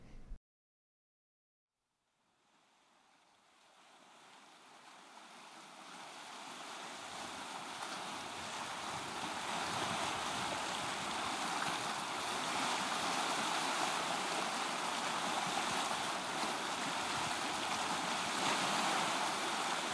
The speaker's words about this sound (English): So yeah, these ocean sounds I actually recorded in Nova Scotia.